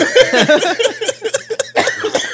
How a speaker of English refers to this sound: Coughing.